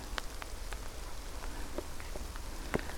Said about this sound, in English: I'm just about to enter the highland of Orkham, and it's suddenly turned wet, windy and cold.